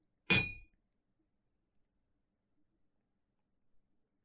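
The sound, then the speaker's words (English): A single bright clink of glasses touching in a toast over Kraken rum, sharp with a short ringing tail, followed by near silence with only a few faint soft bumps. “So, well, as always, cheers, buddy, cheers from all the way over here. Yep, cheers. Chink.”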